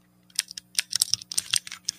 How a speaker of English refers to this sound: I've got bitten by the mechanical keyboard bug. Listen to this.